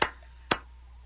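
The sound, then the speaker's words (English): Two loud, sharp claps spaced about half a second apart in a slow, deliberate Viking clap style, each a crisp burst that cuts off quickly, with near silence between and no talking. “That's the Viking clap.”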